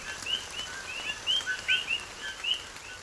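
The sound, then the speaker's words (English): A chorus of Puerto Rican coqui frogs calling, with many short, high, chirping notes overlapping in a loose, irregular rhythm over a soft steady hiss. “The frogs in Puerto Rico that go kooky, kooky, they feel like wet, fat, cold raindrops on my skin.”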